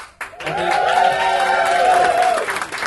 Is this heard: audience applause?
yes